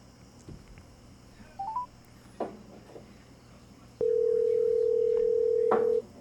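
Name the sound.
phone call ringing tone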